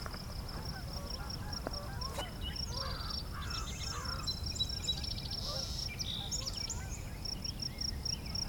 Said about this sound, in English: American crow.